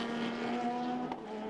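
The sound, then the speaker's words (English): An Aston Martin GT race car heads up the hill at the Spa circuit during the 6 Hours of Spa, its engine holding a loud, steady high-revving drone with a brief sharp burst near the end. No one speaks. “Aston Martin heading up to the top of the hill.”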